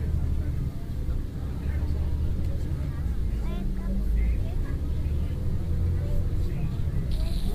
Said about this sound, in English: Please remain seated while the motor coach is in motion. If you're standing, please hold on to the handrail.